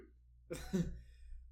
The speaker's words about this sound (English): If a cough could say no, that's what it would sound like.